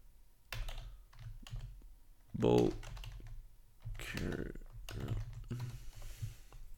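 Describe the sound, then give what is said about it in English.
Rapid clicks of typing on a computer keyboard, fairly loud, in uneven bursts over a low steady hum, with a brief murmured voice partway through, as someone types a Google search. “I'm Googling it. We're going to Google.”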